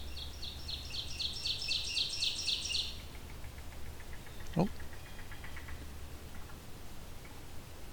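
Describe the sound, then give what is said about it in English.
A yellow-billed cuckoo, at a small pond in a swamp, gives a rapid series of hollow, wooden knocking notes that fade into a softer, slower trail of clucks, over a low steady hum in the background. “a yellow-billed cuckoo here.”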